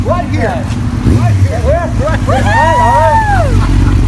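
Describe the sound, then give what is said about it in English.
A motorcycle engine rumbles steadily as its rider arrives, its pitch repeatedly swooping up and down in short revving bursts, building into a longer, higher rev near the end. “It's too nice a day to be on four wheels.”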